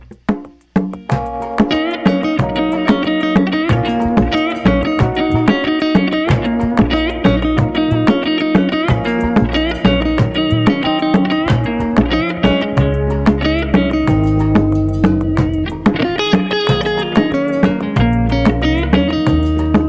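An instrumental rock track plays on its own: steady, loud electric guitar melody with layered harmonics over driving bass and drums, a regular beat pulsing throughout with no voices.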